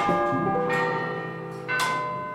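A famous clock tower bell in Prague, which rings every hour, rings out in three loud, resonant strikes, each one leaving a long, shimmering hum of overtones that blends into the next. No one speaks.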